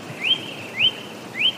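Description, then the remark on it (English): A blackbird sings three clear, rising whistled notes, evenly spaced about half a second apart, moderately loud against a faint background hiss with no voices. “Well, that's a blackbird.”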